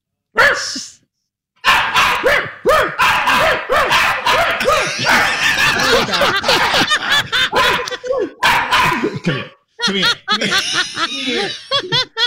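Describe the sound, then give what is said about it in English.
A small dog named Maxie barks and yips excitedly in a rapid, nearly continuous string of high-pitched vocalizations, with brief pauses and some laughter mixed in. “Okay, I can't even be serious because this dog over there.”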